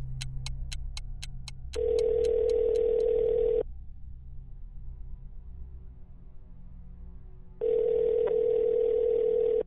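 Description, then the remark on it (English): Two long ringback tones on an outgoing phone call placed by a panicking man to a producer before a live broadcast, each about two seconds, separated by a longer pause, heard over a low line hum, with a quick series of dialing clicks at the start. “phone records indicate that he called longtime Death by DVD producer”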